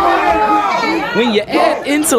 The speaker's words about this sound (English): Y'all hear the crowd.